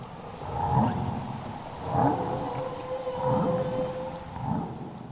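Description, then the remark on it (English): An underwater whale call recorded from a small boat: four evenly spaced low, groaning pulses rumble like an engine turning over, while a thin, eerie siren-like tone holds steady through the middle, over a hissing background. “I hadn't expected a cross between a truck motor turning over and an eerie siren.”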